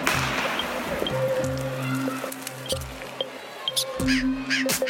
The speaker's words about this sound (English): Of course I remember the birds. They were everywhere. Crows, yeah. Yeah, I remember the crows. That was something else.